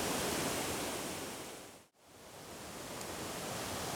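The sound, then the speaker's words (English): Steady, dense roar of a river rushing steeply down through a narrow stretch of rapids and smaller drops to a waterfall just before it reaches the sea, loud, briefly fading to near silence midway before swelling back to full strength. No voices. “to a tumble of dark black rocks, and then the river rushes away below that steeply down into a narrow stretch of rapids and smaller drops, and then finishes with another fine waterfall just before it reaches the sea. So I love walking down past here.”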